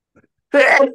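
A single loud, close sneeze bursts out after a faint, brief intake of breath, then trails off quickly; no talking.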